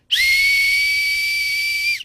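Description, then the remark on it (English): A single loud, piercing blast from an emergency whistle marked Department of Homeland Security, held steady for nearly two seconds, shrill, with a breathy hiss underneath and no talking. “I was a little worried that if I blew this whistle, it would be so piercing it would hurt your ears”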